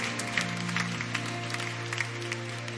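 An audience claps hands in a dense, steady patter of many overlapping claps, fairly loud, over a sustained low musical hum from an organ or keyboard.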